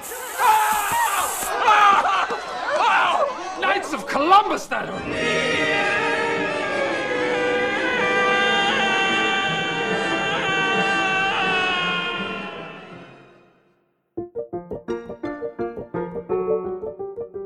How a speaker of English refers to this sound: the two screams you just heard came from Will Ferrell in Anchorman and Mark Hamill as Luke Skywalker in The Empire Strikes Back.